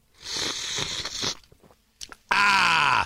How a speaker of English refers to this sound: Hold on a second. I have to take a sip here. Excuse me, everybody.